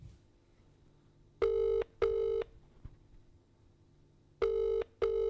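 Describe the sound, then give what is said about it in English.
A phone call to a mother rings out through the earpiece: a steady double-buzz ringback tone repeats twice with a long pause between, clear and moderately loud over a faint hum, with no one speaking. “No, call it.”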